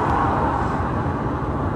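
Loud, steady low rumble of heavy lorries rolling past on a road, a continuous engine and tyre roar with no voices.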